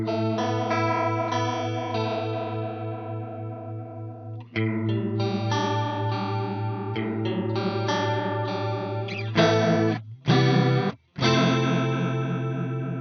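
A sustained, harmonically rich instrumental passage smeared by an intense, fast tempo-synced modulation effect, depth at 60% and rate raised to an eighth note, that makes the pitch and tone sway unsteadily, with a few abrupt cutouts near the end and no voices.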